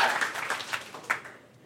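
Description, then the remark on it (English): A short burst of crowd applause, many hands clapping in a dense, crackling patter with a few sharper claps, tapering off quickly toward the end. “Round of applause if you thought this guy might be kind of a stoner.”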